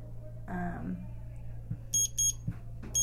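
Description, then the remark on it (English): A buzzer sounds in several quick, bright electronic bursts signaling that time is up, repeating in a fast pulsing pattern over a steady low background hum, with no one talking. “Out of time. Out of time. The buzzer.”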